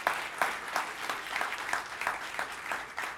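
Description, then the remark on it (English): A church audience claps together for those who finished their degrees and graduated, a steady, even patter of many hands with a few louder accented claps standing out through the sustained applause. No one speaks over it. “Yep, clap for that.”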